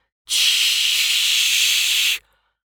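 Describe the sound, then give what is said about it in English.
A loud burst of steam hissing out of a steam engine's exhaust valve as the sliding valve unblocks the exhaust tube and releases a plume of steam, holding steady for about two seconds before cutting off abruptly, with no voices. “It reached the end of its travel, and at the same time, the sliding valve below it unblocked the exhaust tube, releasing a plume of steam in the process.”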